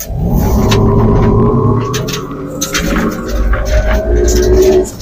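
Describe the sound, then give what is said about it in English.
A truck on 35-inch all-terrain Goodyear tires accelerates hard from 0 to 60 mph on gravel, its engine or motor tone climbing steadily beneath a constant crunching rumble of tires over gravel, loud throughout. “Well, that was 60 miles an hour. Yeah, this truck, we don't have official numbers on gravel.”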